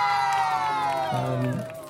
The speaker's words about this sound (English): After the show or sometime in the show, they ask everyone their name. You have everyone clap for them, so that they feel a sense of themselves.